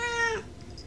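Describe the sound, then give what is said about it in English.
A person gives one short imitation of a black cat's meow, a bright nasal cry that fades out within half a second, followed by quiet background noise. “There's a black cat in here.”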